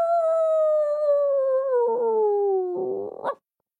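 A small dog, kicked hard, lets out one long, loud howl that slides slowly downward in pitch, then breaks into a shaky, wavering whine before stopping abruptly. No other sounds accompany it.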